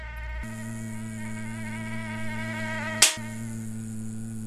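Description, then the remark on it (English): A steady mosquito whine drones continuously with no speech, briefly cut by a sharp slap-like transient near the end before the high-pitched buzzing resumes. “Most of us have had our share of annoying encounters with these pesky little insects, whether you spend significant time outdoors or not.”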